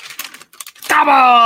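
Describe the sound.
Crinkly rustling from a handled paper craft turkey made by a child for Thanksgiving comes in several quick, uneven bursts for about a second, then a voice abruptly starts speaking loudly over the end.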